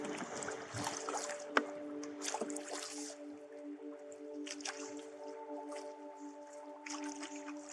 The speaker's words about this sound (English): she dragged her 12-foot canoe into the water, and Barney hopped compliantly into the bow, and they were off